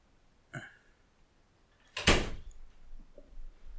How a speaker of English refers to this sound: Shut the living room door, please. Properly.